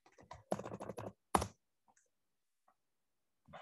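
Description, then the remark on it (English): A quick flurry of computer keyboard typing, fairly loud, followed by a short pause, a few sparse faint clicks, and another keystroke at the end. No one speaks. “I think it's the keyboard.”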